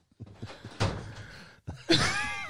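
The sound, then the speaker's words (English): A door opens and shuts: a soft thump, a brief pause, then a louder bang with a creaky, squeaky tail as it settles. No voices are heard. “The opening and the closing of the door.”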